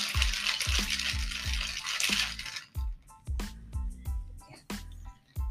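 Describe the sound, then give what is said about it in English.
A cocktail shaker full of ice, sweet and sour mix and a splash of blue liqueur for an electric lemonade rattles in quick, steady strokes, about a dozen loud shakes with a sharp clatter on each beat and no voices. “Just a splash to make it pretty. And then you got to shake it.”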